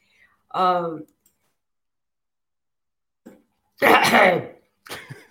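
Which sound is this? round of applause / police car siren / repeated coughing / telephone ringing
repeated coughing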